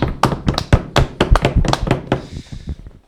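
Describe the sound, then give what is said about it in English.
A quick, uneven flurry of hands banging on a table mixed with clapping, with sharp loud thumps and slaps at first, thinning into softer scattered taps toward the end. “half table, half clap.”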